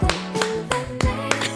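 A quick series of about six sharp, fleshy slapping claps made by a person's buttock cheeks smacking together as a demonstration, fairly loud, spaced unevenly over a steady low tonal background.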